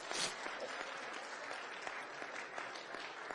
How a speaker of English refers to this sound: Yes, go ahead and clap for that.